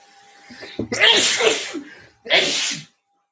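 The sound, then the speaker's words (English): A loud sneeze with a sharp intake and explosive burst, followed after a short pause by a second breathy sneeze or exhale; no talking. “Bless you.”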